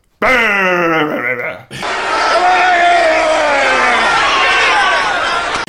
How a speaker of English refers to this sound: The precise moment is 1 hour, 35 minutes, 42 seconds. Another good grunt of the night there.